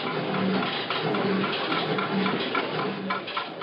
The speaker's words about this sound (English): This machine washes dishes, not your husband. You want me to demonstrate this machine to you?